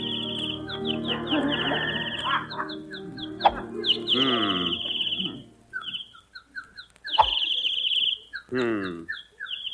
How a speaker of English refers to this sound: Damn those birds. I wish they'd stop singing. They're throwing me off my game.